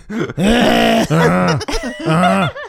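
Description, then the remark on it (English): Someone makes loud, exaggerated throat-clearing noises to get someone's attention: three drawn-out, groaning vocal bursts in quick succession, with no other talking. “Just put your hand up and clear your throat.”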